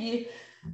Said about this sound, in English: So I feel like I got to sneeze again.